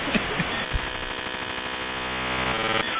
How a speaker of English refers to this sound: Put a blanket over the modem. Oh no, God, she's gonna wake up. We're almost there. We need to muffle the modem somehow. Let's all hover around it.